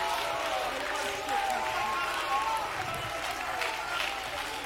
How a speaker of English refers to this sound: Somebody give him praise right now all across this room. Would you clap your hands? Would you lift your voice in a triumphant shout of praise to this God?